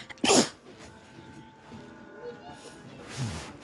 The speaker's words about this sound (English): That was a sneeze.